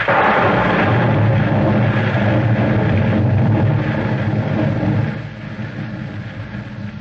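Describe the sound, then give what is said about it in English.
A loud storm rumbles with heavy, rolling thunder and a dense wash of rain, booming for several seconds before easing to a steadier, softer roar. No one speaks. “The storm grew worse.”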